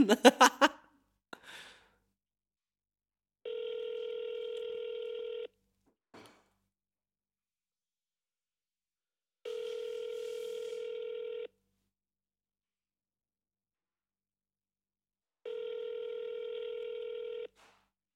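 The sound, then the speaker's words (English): An outgoing phone ringback tone sounds three times in steady, evenly spaced bursts of about two seconds each, fairly loud and clear, with a few brief clicks and rustles near the start. “they typically pick up after the second ring.”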